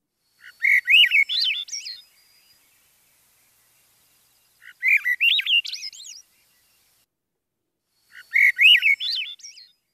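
A visiting Swainson's thrush in a backyard sings three separate phrases, each a flutey, spiraling run of notes that climbs upward and fades at the end, spaced by a few seconds of silence, clear.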